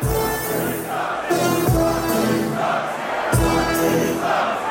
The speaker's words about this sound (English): Shaq, did you know DJ's Dean on the side? Of course. As …. And during a recent set, he led the crowd in a Barkley sucks chant with Barkley has no rings graphic displaying on the video board. Barkley sucks!